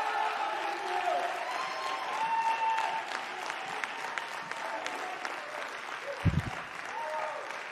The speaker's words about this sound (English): Can we give Pastor Rodney and Adonica one more round of applause? Amen.